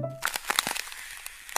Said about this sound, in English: Now that it's New Year's, though, all the hojas that I see are kind of on the ground, and they're pretty frozen and kind of crunchy when I step on them like this.